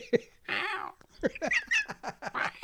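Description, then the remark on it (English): A person imitates a cat named Mickey, producing a quick run of several meow-like vocal calls with rising and falling pitch, fairly loud, with no other talking. “Well, you're see, really that also sounds like a cat I had for 17 and a half years, Gertrude, Gert.”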